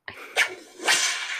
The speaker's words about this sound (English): But it's actually just a whip crack, I would have called that.